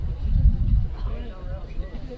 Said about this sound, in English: Is that a big gust of wind? Tell me that's what that is. That is wind.